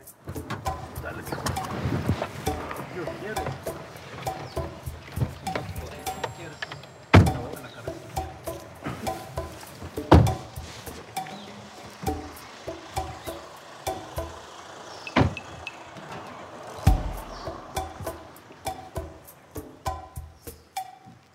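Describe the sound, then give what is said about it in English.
A car parks near a house as a team arrives, with engine rumble and shuffling movement, punctuated by a few sharp door thunks spaced several seconds apart, while muffled voices murmur in the background. “The team arrives at Cuervo's house and parks nearby.”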